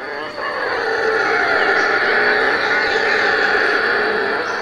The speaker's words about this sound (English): So howler monkeys in Brazil.